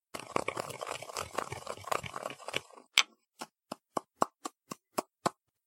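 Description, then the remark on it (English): Ordinary cough drops are ground up for a sugar experiment with a dense, gritty grinding crunch for about three seconds, followed by roughly nine sharp, evenly spaced taps. No voices are heard. “I will now grind up the cough drops.”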